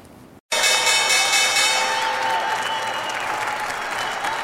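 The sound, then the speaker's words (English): A sustained electronic stock exchange opening bell, rung by Hippo Home Insurance at the US market open, rings with steady tonal lines while loud, continuous applause and cheering fill the space, beginning abruptly after a brief silence and holding strong throughout. “Welcome back to First Move and Hippo Home Insurance ringing the opening bell this morning.”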